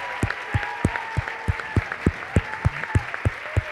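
An audience bursts into applause, with sharp, evenly spaced claps landing in a steady rhythm over a soft background murmur of voices.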